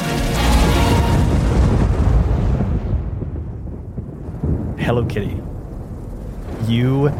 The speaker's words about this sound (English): This storm continues around you. You have bested it. You have killed aspects of it, but you still see an anger in it.